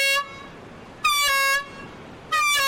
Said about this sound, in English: This is just a test, but about 50 times a year, this horn and an even louder siren signal an actual alarm. It means a great white shark is swimming toward shore.